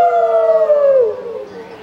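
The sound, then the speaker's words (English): An audience, prompted on a count of three, howls together in imitation of a wolf, a loud, sustained wavering tone that slowly slides downward and fades over about two seconds. “Now on three, everyone howl like a wolf.”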